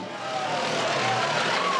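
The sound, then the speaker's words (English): A Volkswagen car drives along with a steady, fairly loud engine hum and broad road noise, a faint whining tone drifting slightly in pitch, continuous over a brief stretch. “They jump into the VW.”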